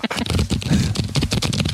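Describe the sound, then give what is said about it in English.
A deck of cards being shuffled on a table, a quick run of dense, crisp fluttering riffles that rattles on steadily for under two seconds with no voices. “But before you guys go, can't go without taking a card from the old pod deck. Are you going to shuffle it? Yeah, of course I am.”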